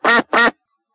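Two loud, nasal duck quacks in quick succession, clear, followed by silence with no other sounds.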